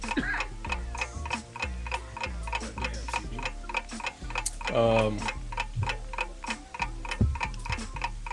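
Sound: ticking clock countdown timer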